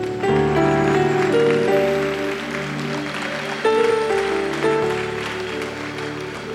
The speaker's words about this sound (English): Let us stand to our feet. Amen. Let us stand to our feet. Clap for Jesus.